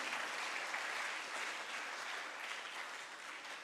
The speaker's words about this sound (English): And give Jesus another big hand clap. Hallelujah.